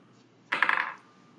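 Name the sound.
dice being rolled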